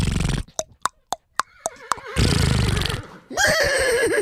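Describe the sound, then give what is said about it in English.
A person imitates a horse with a series of clicky tongue clops followed by a loud, wavering vocal whinny and a sputtering lip trill, clear. “All right, well, let's act like she's massaging you. Make a horse noise.”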